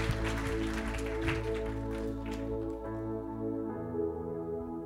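A crowd claps as a cheer and praise to God over steady, sustained keyboard chords; the applause thins out after a couple of seconds, leaving the held musical tones ringing on alone.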